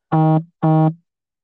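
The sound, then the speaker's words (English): A phone vibrates from an incoming text message with two short, evenly spaced buzzes, each a harsh low-pitched drone lasting about a third of a second, standing out loudly on its own with silence after. “You're vibrating. Yeah. Somebody sent me a stupid text message.”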